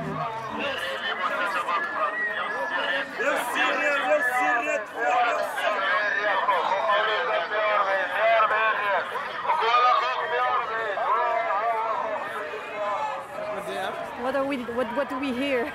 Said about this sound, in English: Anyway, the sound bite you're gonna hear in a second is from the moment we stepped off the tram and we're immersed in a local market.